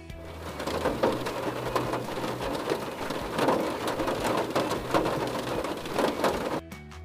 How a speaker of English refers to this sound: Rain on a car roof.